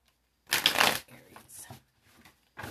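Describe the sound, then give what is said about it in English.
A deck of cards being shuffled for a sun-sign reading: a loud riffling burst, followed by softer shuffling and a final short flutter of cards. “So let me shuffle these and just see what's coming up.”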